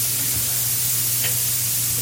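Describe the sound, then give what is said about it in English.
A steady, airy hiss of gas leaking from the NOS tank for a kegerator runs unbroken throughout, over a low electrical hum, with one faint click partway through. “Yeah, that's the NOS tank. Oh, so what is going on? I can only hear it in my head. Oh, no. No, okay. That's for the kegerator.”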